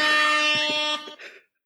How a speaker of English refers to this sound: Damn ads. I was trying to use an air horn to celebrate.